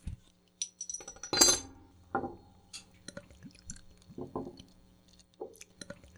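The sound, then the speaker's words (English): Beer, an American pale ale, glugs and splashes into a glass with a few sharp clinks, followed by softer bubbling and gurgling as the pour settles and forms a slightly rocky head, no voices. “So I get a finger and a half ahead on this pour.”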